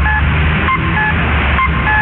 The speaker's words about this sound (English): The world is full of chimes. We have a chime that tells us when to get up and when to go.